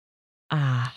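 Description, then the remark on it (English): After a moment of silence, a person lets out a drawn-out, voiced yawn, a steady low groan that holds for about half a second before trailing off, fairly loud. “Oh, yawning it out. Sorry.”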